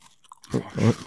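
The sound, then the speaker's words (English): Someone chews a dry cookie, with soft crunchy bites and moist mouth sounds building to a louder burst of crunching before easing off. No talking. “It is dry, but it's good. I got my mic is all dirty with a cookie.”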